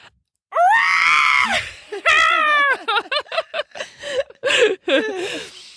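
A creature at a campsite near a tent, after a person screams at it, lets out a loud, shrill scream-howl that rises in two long wavering cries, then breaks into a rapid series of choppy shrieks and yelps, piercing.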